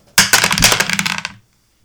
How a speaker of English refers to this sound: Are we rolling dice for this? Yeah, we're going to roll dice.